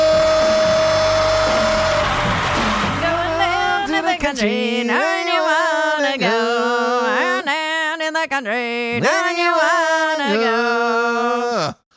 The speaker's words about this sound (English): That is a song from your favorite car commercial. I don't Geico or something. I don't even know which car it is. I don't even know what the name of the band is, but I know that song is in every car commercial.